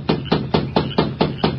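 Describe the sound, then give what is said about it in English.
Seven quick, evenly spaced knocks as a masked man raps on the wooden door of a lighted bunkhouse in the darkness, each a sharp, fairly loud rap in a steady rhythm, with no voices. “Then, with Dobbs close by, he rapped on the door.”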